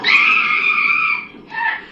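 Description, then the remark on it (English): A loud, high-pitched scream held for over a second, then a brief pause and a second, shorter scream. No talking. “Needy, enough with the screaming.”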